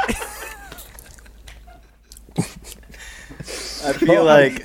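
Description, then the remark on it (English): Close-up chewing and biting, with wet smacking and crunchy bursts that build toward a loud, busy stretch near the end, all right against the microphone with no talking. “I'm chewing right next to the mic.”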